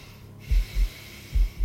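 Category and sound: vocal imitation, imitated heavy breathing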